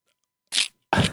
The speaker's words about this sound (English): Can you hear the crinkle? The crinkling of the vegan egg? That's the wrapping paper.